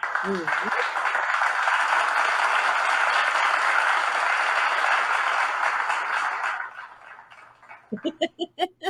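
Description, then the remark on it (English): An audience applauds in a steady, loud wash of clapping for about six seconds before it fades. A series of short, rhythmic voiced bursts follows at the end. “I think listeners, you already know that you're in for a good time when we start with audience applause.”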